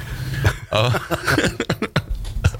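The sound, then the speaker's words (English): A person coughs several times, a run of short, harsh bursts with brief voiced throat noises in between and no clear speech. “Thought I hit the cough button.”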